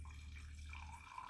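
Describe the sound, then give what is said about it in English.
Wine pours into a glass in a steady, soft trickling stream, fairly quiet, lasting just over a second with no voices. “Listen to me pour my wine.”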